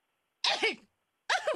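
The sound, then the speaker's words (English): Two harsh coughs, each a short raspy burst with a voiced edge, separated by a brief pause of silence, from a person coughing over food they are cooking. “You're coughing over my food.”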